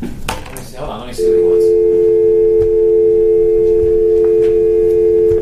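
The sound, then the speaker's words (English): A loud, steady electronic telephone tone of an incoming call sounds without a break for several seconds, following a brief moment of voices and shuffling at the start. “I got somebody calling in on the phone.”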